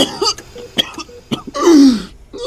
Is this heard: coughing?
yes